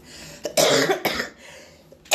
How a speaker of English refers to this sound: Oh my gosh, my side hurts every time I cough.